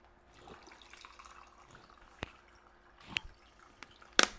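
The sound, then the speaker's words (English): Water drips and splashes in a few sharp, irregular plops against a quiet background, with the last splash the loudest, as water runs down a person's face. No one speaks. “and now the water that's running down my face doesn't stop anymore.”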